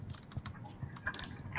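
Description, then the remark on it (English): Rapid, irregular clicking of keys being typed on a computer keyboard, with a low background hum and no voices. “Oh, that's the right keyboard.”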